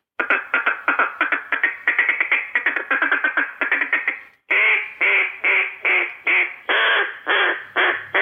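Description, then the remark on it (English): Ducks on the water chatter in a fast, steady run of clipped feeding calls, then shift to a slower series of louder, drawn-out quacks from a hen, about one per second. Clear, with no talking. “That's what ducks sound like on the water.”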